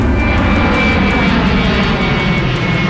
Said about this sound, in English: I don't want to sound like one of those airplane nerds, but that is definitely a 777 you just heard fly overhead. You're the expert. I totally made that up. I have no idea what that is.